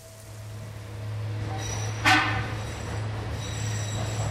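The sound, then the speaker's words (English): A tram rumbles steadily along rails inside a tunnel at Yucca Mountain, waiting to carry workers into the depths where the U.S. Department of Energy plans to store nuclear waste. A low droning hum continues throughout, with a brief metallic screech near the middle and no voices. “A journey into Yucca Mountain begins at the entrance to a tunnel where a tram waits to carry workers into the dark depths where the U.S.”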